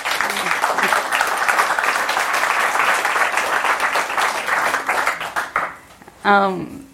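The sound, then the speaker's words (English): An audience at a book talk applauds the author steadily, a dense wash of many hands clapping for about five seconds before it fades, then a voice starts speaking. “and I'd ask everyone to give you a round of applause.”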